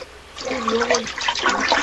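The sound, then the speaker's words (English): A toilet flushes, a rushing gurgle of water that swells quickly and churns steadily for the short length of the sound, with no voices over it; the water comes back up instead of going down. “I flush it and water comes up, not down.”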